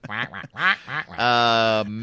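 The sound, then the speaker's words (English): A person mimics a duck, as a duck version of a rapper, letting out several quick nasal quacks and then one longer, drawn-out quack, loud. “That's the duck version of ….”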